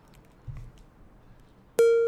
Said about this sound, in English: Everybody looks at me like I'm crazy, and I'm like, yeah, you're all still waiting for that thing to go beep. I just ignored it.